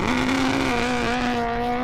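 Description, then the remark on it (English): A race car engine roars loudly, a steady buzzing whine with a slight dip in pitch as it carries on for about two seconds, with no voices; a prop car leaning into the turns at Orlando Speedway, a stock car track in Central Florida. “Leaning into turns, the fearless young fox downed the needle, roaring by in a prop car.”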